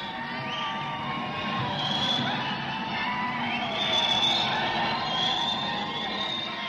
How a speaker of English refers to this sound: Under the marble columns, there are now 8,000 gay men and lesbians screaming.